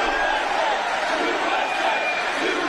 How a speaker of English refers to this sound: There's the USA chant. You love hearing that.